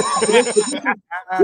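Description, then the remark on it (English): A school-style bell signalling the move to third period rings loudly with a bright, sustained metallic trill rich in high overtones, cuts off briefly, then rings again in a shorter burst. “We're gonna give you a bell real quick.”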